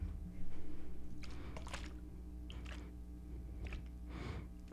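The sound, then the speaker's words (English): Gatorade spilling onto a person, heard as a few wet, squishy splashes and drips in uneven bursts over a low steady hum, with no one talking. “We gonna act like the Gatorade did just spill on me.”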